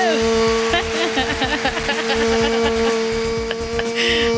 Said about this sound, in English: I do the echo effect. I love it.